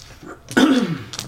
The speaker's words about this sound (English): A muddy sneeze.